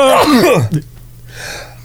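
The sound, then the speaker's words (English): A single sneeze: a voiced, drawn-out wind-up sliding downward in pitch, ending in a short sharp burst, followed by quiet room tone. “I'm going to sneeze.”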